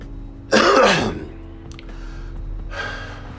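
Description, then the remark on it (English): A single loud, harsh cough bursts out, followed by a couple of softer, breathy exhales in otherwise quiet surroundings. “It don't hurt when I breathe, but it hurts when I cough.”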